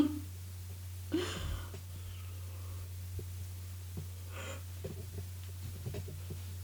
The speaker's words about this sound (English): Are you yawning? Sorry. Are you yawning? I'm sorry, that was so loud.